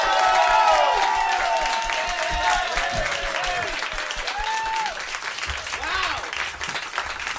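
A crowd bursts into sustained, dense applause as comedian Andy Kindler is welcomed to the stage, with scattered high whoops and cheers rising and falling over the clapping. It stays loud throughout, easing only slightly toward the end.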